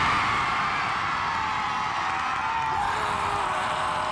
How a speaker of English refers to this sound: Now, I'm not going to lie, there was a lot of nervous energy to start off with, but once Steph Catley slotted home the penalty, thousands here let off a huge cheer and roar.